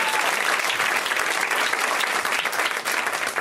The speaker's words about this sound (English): One more time, round of applause for Cameron Esposito, your wonderful host.